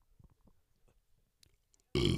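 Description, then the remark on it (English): A few soft, low gurgling noises lead into a single loud burp that erupts abruptly at the very end and is cut off mid-sound. “Yeah, it was a burp, people.”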